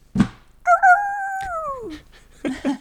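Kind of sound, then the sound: animal, dog barking and howling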